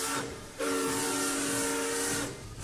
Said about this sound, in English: Oh, the train's moving again.